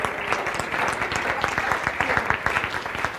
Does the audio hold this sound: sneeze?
no